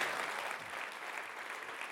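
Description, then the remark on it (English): A college audience applauds steadily to honor President Hagen and Dr. Graham, many hands clapping together in a dense, continuous wash of sound that holds an even level throughout, with no voices standing out. “Could you clap your hands for them today?”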